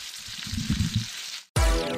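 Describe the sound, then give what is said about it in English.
Bacon crackles and sizzles in hot grease, a steady hiss dotted with quick pops, then breaks off abruptly into a loud, low, tonal burst. “Listen to that bacon crackling in that grease, y'all.”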